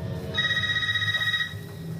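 A landline telephone rings once, a steady electronic trill lasting about a second, heard clearly over a low background hum with no talking.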